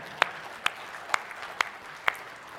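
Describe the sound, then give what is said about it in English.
Applause from an audience as a round of applause to the Lord: five sharp, evenly spaced claps ring out over a steady wash of softer clapping and crowd noise, with no one speaking. “If you find yourself able to say those same things about who God is, would you give a resounding amen or a round of applause to the Lord?”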